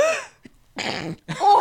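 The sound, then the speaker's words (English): A person sneezes: a voiced, rising intake of breath, then a sharp, loud, breathy burst, followed quickly by a second noisy blast. No speech accompanies it. “Does COVID come with sneezes now?”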